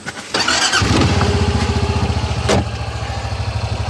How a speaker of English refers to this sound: Okay, we're in Mike's truck right now, driving down a really bumpy forest road, very close to Algonquin Park, a beautiful provincial park that stretches from Georgian Bay to the Ottawa River.